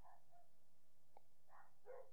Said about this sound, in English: A fucking dog fight happening out there.